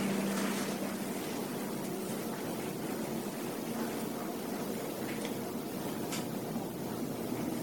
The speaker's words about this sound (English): Airplanes flying overhead. Not just the one we hear right now, but many, many thousands of airplanes of different sizes and shapes and helicopters.